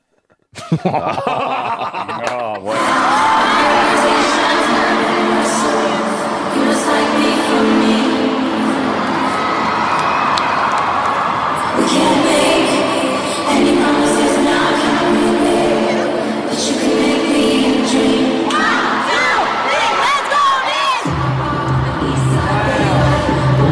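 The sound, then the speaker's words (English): A large stadium crowd in Miami chants in unison, a loud, dense roar of many voices holding sung tones that carries on steadily for about twenty seconds after a brief quiet start. “This is the chant we were talking about. This is from Miami.”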